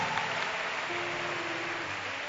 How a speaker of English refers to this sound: Can you clap your hands? Oh, put your hands together for Jesus.